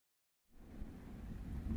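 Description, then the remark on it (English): After a moment of silence, a deep rumble of thunder rolls in with a steady hiss of rain, building gradually louder with no voices. “The fifth and final day of Camp Kiwi the Bird starts with a storm. The skies rumble, and rain pelts the ashen remains of Cabin 3, the still bubbling quicksand at the volleyball court, and the still smoldering remains of the asteroid”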